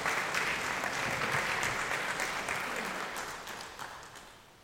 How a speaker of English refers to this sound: And so if you would give my beautiful bride a round of applause as she comes up here today.